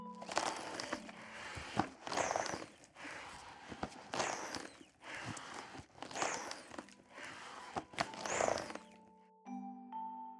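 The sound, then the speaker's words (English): Accordion bellows being pumped side to side on their own, blowing air through the instrument and giving a steady rhythm of about six breathy whooshes with faint creaks, like slow breathing. A short held reed tone sounds at the end. “An accordion has something called bellows that you have to pump side to side to blow air through the instrument.”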